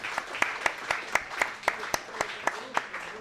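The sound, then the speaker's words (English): An audience applauds Chuck's Southern Comforts Cafe for hosting: a dense, steady patter of many hands with louder claps punching through at a quick, regular beat, and a faint murmur of voices mixed in. “How about a nice round of applause for Chucks for hosting once again?”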